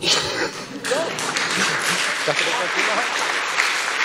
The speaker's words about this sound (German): Applaus.